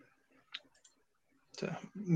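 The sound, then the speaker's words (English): A few soft, quick computer clicks, made while switching broadcast layouts, sound in near silence, followed by a person beginning to talk loudly. “I'm clicking buttons around for this director job.”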